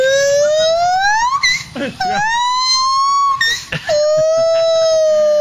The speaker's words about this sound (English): the monkey mating call needs to be the new wave pool siren at Sandcastle.